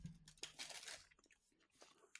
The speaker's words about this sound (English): So I've got... I'm munching my way through the Tesco's one. And then I've got the Aldi one.